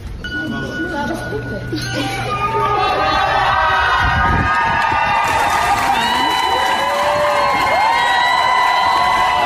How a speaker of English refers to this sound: And when he walked out of the hospital, a huge group of friends and family and students, they were all cheering for him.